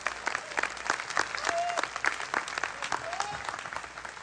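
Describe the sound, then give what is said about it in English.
An audience at a morning sermon claps for God in a dense, sustained round of applause, with a few brief whistles or cheers rising above the patter. “I think he deserves an applause this morning.”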